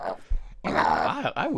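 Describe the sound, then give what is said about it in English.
A dog named Lola growls and groans in short, throaty bursts, rising and falling in pitch, with brief gaps between vocalizations; fairly loud, no talking. “I wish that dog would get laryngitis, man.”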